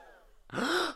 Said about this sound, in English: Crowd gasps